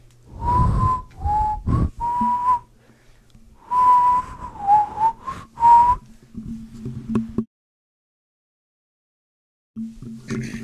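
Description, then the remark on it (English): Someone whistles a short, eerie tune in two phrases of sustained and sliding notes, clear, followed by a low droning hum and a brief silence. “But all of a sudden, he hears a faint whistle of death.”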